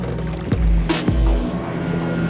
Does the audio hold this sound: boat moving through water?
yes